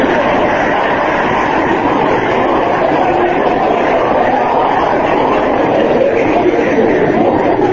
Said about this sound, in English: Listen to the knock in that motor. Does that mean anything? Not anymore.